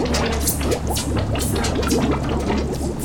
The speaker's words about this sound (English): I can hear water, but I don't feel wet.